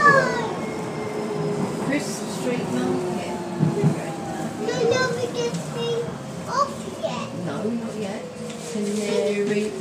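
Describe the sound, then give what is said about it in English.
A light rail train bound for Canary Wharf, with the next stop All Saints, rolls steadily along the track, its continuous low rumble and motor whine heard on board while children's voices chatter over it. “This train is for Canary Wharf. The next stop is All Saints for Crisp Street Market.”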